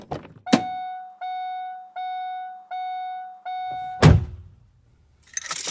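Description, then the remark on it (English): A car's door-open chime beeps steadily five times, then the door shuts with a loud, solid thunk, followed by a brief low rumble and quiet cabin hiss. “Ooh, you know what that sound mean. It's time to get back in that car, baby.”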